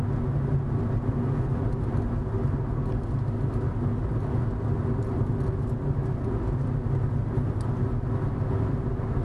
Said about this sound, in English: That could be on account of this car coming the other way.